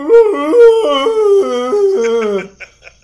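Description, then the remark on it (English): A person's voice imitates an elk bugling: a loud, drawn-out howling call that warbles and steps in pitch for about two seconds, ending with a couple of short breathy squeaks. “Is that what an elk does? Yeah, it bugles. It goes...”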